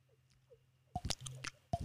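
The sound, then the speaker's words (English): A voice imitates dripping water by flicking the cheek, making two wet, pitched plops about a second apart with soft smacking mouth clicks between them, after a quiet start. “Oh yeah, the water drip noise.”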